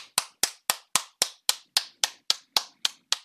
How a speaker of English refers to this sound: Clapping for her.